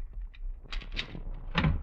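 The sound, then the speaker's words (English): A key rattles and clicks in a lock, followed by the clunky sound of a door being pushed open, with a low rumble of background noise throughout. “I should have my key. Yes, here it is.”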